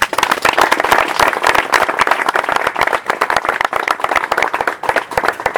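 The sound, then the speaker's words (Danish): A crowd applauds steadily, many hands clapping in a dense, continuous patter that stays loud and even throughout, with no voices standing out. “Og nu behøver jeg ikke klappe mere”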